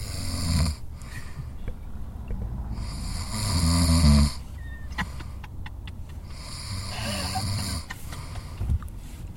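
A man snoring in his sleep, recorded on a Zoom recorder, with slow, rattling breaths recurring every few seconds over a faint background hiss and no talking.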